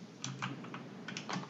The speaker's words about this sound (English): What the hell was that? That's my keyboard. My second keyboard.